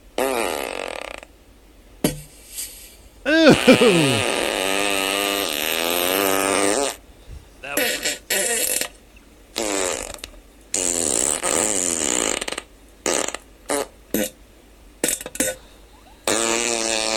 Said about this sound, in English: I wonder if I will ever get to a point in my life where the sound of farts isn't funny. I laughed the other day on the way home thinking the funniest farts are the ones where they're like loud and stinky at the same time.